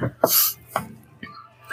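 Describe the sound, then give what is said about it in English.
A person imitates a cat coughing up a hairball: a run of four harsh, breathy hacking bursts spaced about half a second apart, with no other talking. “Coughing up that hairball.”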